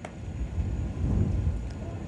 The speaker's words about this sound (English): And a big gust of wind comes up, blowing a little dirt around down there on the infield. It's been a great day weather-wise with temps around 80 today, but, boy, the winds have been nasty all day long.